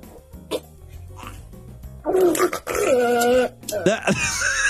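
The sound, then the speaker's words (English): Faint low rumbling and soft pops, then loud, wavering squeals of air or gas escaping from a penis after something is sprayed into it, a fart-like, whiny, tonal sputter in two long bursts, no talking. “That right there, that's the fart. The air is escaping.”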